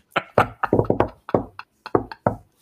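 A hand bangs on a table, a dozen or so heavy, dull thumps beaten out in a quick, uneven rhythm with a couple of short pauses, and no voices.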